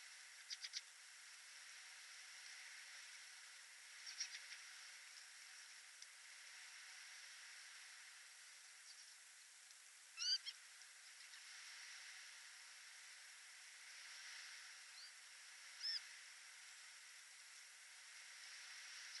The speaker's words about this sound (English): some field fares departing over the North Sea in mid-April on a windy evening, heading back towards Scandinavia